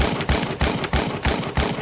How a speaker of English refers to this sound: It was over almost as soon as it began. Responding officers arrived only minutes after the shooting started, but when they got there, the gunfire had stopped.